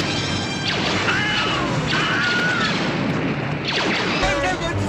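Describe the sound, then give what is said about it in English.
Short, high-pitched screams with a sliding pitch, the Wilhelm scream stock sound effect, cut through a dense, loud barrage of crashes, booms and gunfire in a chaotic battle scene. “So, some famous movies that you have definitely heard the Wilhelm scream in.”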